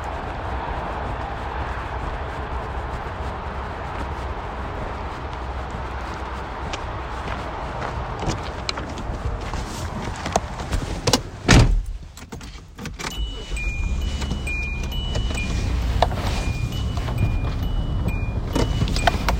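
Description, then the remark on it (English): Footsteps crunch along for several seconds as someone walks to their car to move it off the road, then a single solid car door thud, followed by an engine starting and a steady low rumble as the car moves off, with a faint intermittent chime. “Oh, I was just making sure my car wasn't, like, on the road. I feel like maybe I should bring it up here.”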